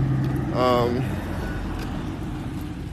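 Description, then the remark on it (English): A car rumbles along the street, a steady low engine and road noise with a brief tonal swell near the start, then a continuous traffic hum. “I'm like, I thought that was her car.”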